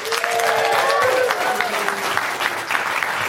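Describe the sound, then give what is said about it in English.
A live audience at the New York City Google headquarters for Zenith Basecamp applauds steadily, dense clapping filling the whole stretch at a strong, even level, with a few whoops and cheers rising above the crowd. “That applause is super important because I have no credibility with our audience, so they wouldn't have believed me if you didn't applaud.”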